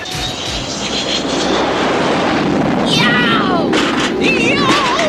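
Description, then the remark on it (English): A low-flying Venom aircraft roars past a yacht just a few feet above the waterline on Lake Mead, with a loud, steady rush of engine noise and high whining tones that bend and slide in pitch as it passes. “Of course, just then, we see Manta flying just a few feet above the waterline and buzz past the yacht.”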